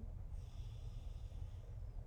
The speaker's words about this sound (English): Breathing out, breathing in, breathing out, final breath in, final breath out.